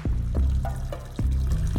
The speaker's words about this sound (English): And I thought, you know, since no one's here, everyone's busy in the hall, I'm just going to pee into the water. So that's what I did.